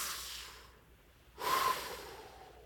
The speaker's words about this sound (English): And now everybody, take a deep breath. Here we go, ready?